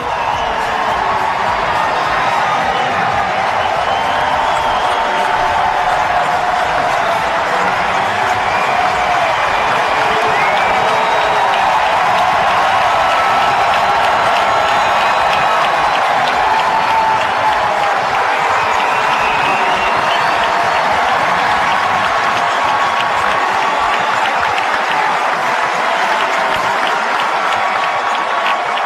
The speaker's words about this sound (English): The call right there on 105.7 The Fan, the crowd of just over 10,000, giving Mancini a standing O before his first at-bat at Camden since being diagnosed with cancer last spring.